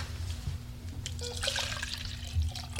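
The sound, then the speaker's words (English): Water pours in a steady, splashing trickle into a glass from the counter for a couple of seconds, moderately quiet, over a low constant hum of room noise. “Water? Use the glass on the counter.”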